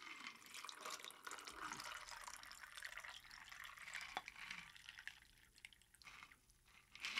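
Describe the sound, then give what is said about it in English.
Liquid pours steadily over ice cubes into a glass for several seconds, a continuous splashing gurgle that thins and wavers near the end, with no one talking. “All right, now I'm gonna pour.”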